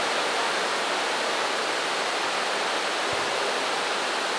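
Loud, steady rush of pouring water flooding onto musicians' instruments, like a heavy flood or downpour, hissing continuously for the whole stretch with no pauses and no voices.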